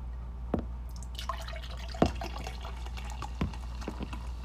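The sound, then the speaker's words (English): Cold Baja Punch soda pours from a bottle into a glass with a steady fizzing crackle, punctuated by a few sharp drips or clinks, all over a low constant hum. No one speaks. “I'm gonna put this in the glass real quick.”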